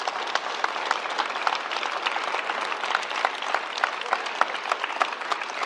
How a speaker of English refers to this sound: If you are original library people, that deserves applause, because let me tell you why.